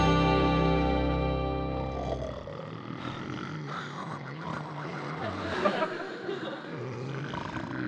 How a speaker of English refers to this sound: How can a guy sleep in this bed with these three guys snoring? That's a pretty thing. That sounds like a soundtrack for Walt Disney's. These guys have kept me awake half of the night. Oh, that's snoring.